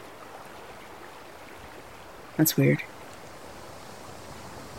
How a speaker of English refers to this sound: It's really low to the ground. And in the middle, there's just this spring. And it just bubbles.